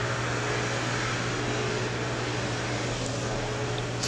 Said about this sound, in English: Well, the vacuum cleaner, that's God telling me to go somewhere else, so that's what I'm gonna do.